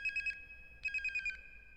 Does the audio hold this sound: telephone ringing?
yes